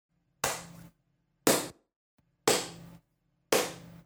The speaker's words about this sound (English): Like a clapping noise? You hear a clapping noise.